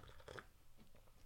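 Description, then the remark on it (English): A quiet sip of tea from a cup: a short slurping draw of liquid followed by soft mouth and swallowing noises, with no talking. “Oh, let me just have a sip of tea before it goes cold.”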